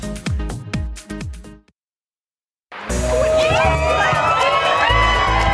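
crowd, outdoor crowd cheering

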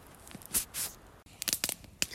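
nature, crackling campfire

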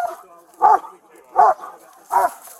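animal, police dog barking

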